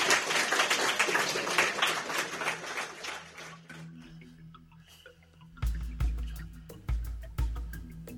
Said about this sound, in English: So, and without further ado, let's just give David one more big round of applause, please. Well done.